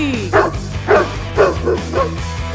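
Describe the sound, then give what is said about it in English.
Dogs bark in a steady series of about five loud woofs spaced roughly half a second apart, over a low, sustained musical drone. “Release the hounds.”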